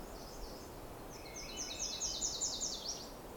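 A Nashville Warbler gives a quick series of high, thin chipping notes for about a second and a half over a steady low rumble of background noise, with fainter high notes at the start.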